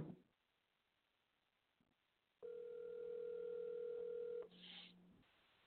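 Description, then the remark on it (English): Quiet line with a faint click, then a single steady telephone ringing tone lasting about two seconds as a radio host's outgoing call goes unanswered, before it cuts off with a brief crackle. Nobody answers or speaks. “Now he don't even want to answer the phone.”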